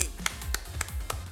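A single man claps for himself six times in a slightly uneven rhythm, each sharp, bright clap standing out over a low murmur of background noise.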